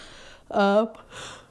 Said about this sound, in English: Do it again. No, no, not the yawn. I was trying to eliminate the yawn. Fine, whatever. We'll leave it in.